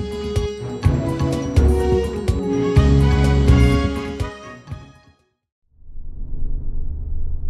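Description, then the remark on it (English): After a loud, busy burst of sound cuts to a moment of silence, a car's low engine rumble rises and holds steady, muffled, as it slowly drives up a driveway toward a garden party. “Yes, I believe it's just a bit further down this driveway. Once we're there, we can give the car to the valet and enjoy ourselves a good old-fashioned garden party.”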